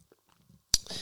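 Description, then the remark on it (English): Someone takes a quiet sip of water with soft, faint mouth and swallowing sounds, then a single sharp clink as the glass is set down, followed by a brief rustle. “Excuse me, water.”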